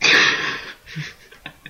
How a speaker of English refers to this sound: Just breathing in and like tilting my laptop, so a few squeaks.